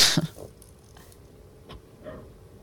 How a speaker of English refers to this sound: There's the dog as well.